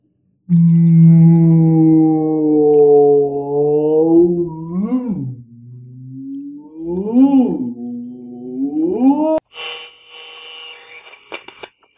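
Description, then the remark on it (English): A human voice imitates whale mating calls: long, loud, moaning tones that swoop and bend upward in pitch, repeated several times, ending with an abrupt burst of hissy noise. “And now, for whale sex noises, an impression by me”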